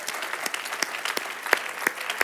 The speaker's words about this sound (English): Oh, you can clap for my wife. Come on.